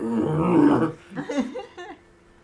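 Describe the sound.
A person gives a stern growl like an animal, a rough, sustained snarl lasting about a second, followed by a few shorter guttural rumbles that trail off quietly.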